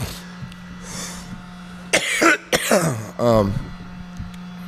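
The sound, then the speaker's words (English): Three harsh coughs from a man with a bug in his throat come in quick succession near the middle, each a rough raspy burst, over a steady low electrical hum with quiet stretches before and after. “Cough so low.”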